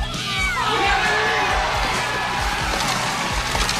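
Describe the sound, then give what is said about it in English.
A crowd of kids at an arcade in RoboCop booing and jeering RoboCop while throwing popcorn at him: a dense, continuous wash of overlapping young voices with wavering, falling tones, loud and steady for the whole stretch, with low thumps underneath. “The kids at the arcade are booing RoboCop and throwing their popcorn at him.”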